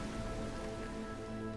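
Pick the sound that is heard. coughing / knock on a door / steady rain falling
steady rain falling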